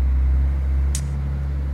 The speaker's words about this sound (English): Huge truck passing by, rudely interrupting.